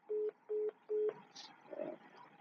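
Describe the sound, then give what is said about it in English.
Three short, evenly spaced electronic phone tones beep in a row as a mobile phone call drops, then give way to faint crackly line noise with no one talking. “And we've just lost Michelle. Just one moment. I'll get her back.”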